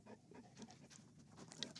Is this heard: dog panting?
yes